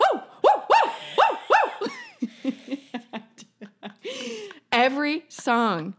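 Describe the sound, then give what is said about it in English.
A person imitates a drunken man's dog-like howling holler, made every time a song ended: four quick rising-and-falling yelps, then brief chatter and a longer wavering howl mixed with laughter, fairly loud. “Go ahead and give us the holler”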